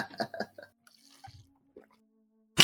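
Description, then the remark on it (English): A wet, throaty gulp stands out among soft liquid clicks and squishy mouth sounds, quiet, ending with a sudden sharp burst of noise. “that gulp was so loud.”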